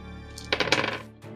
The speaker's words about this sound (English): Ooh, hot dice. We got three successes with two sixes. Oh, yes. Four successes, five total successes on intellect.